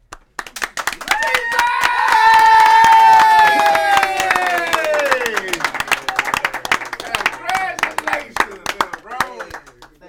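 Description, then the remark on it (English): A small group claps steadily for about ten seconds as someone walks in, the sharp hand claps continuous, mixed with loud drawn-out cheering and whooping voices that trail off. “Yeah, that's how we got, did all the clapping.”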